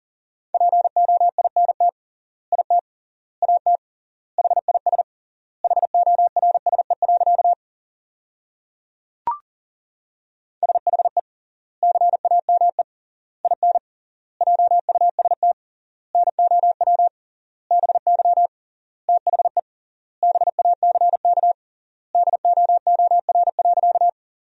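Fast Morse code at 40 words per minute with triple word spacing, sending sentences built from the 300 most common words: a single steady mid-pitched tone keyed in rapid dots and dashes, grouped into words with longer gaps between, plus one brief click partway through.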